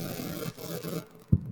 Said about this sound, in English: Is anyone else hearing a weird noise? Yep. It's probably my air conditioning because it's hot. It sounds like Satan. It sounds like static.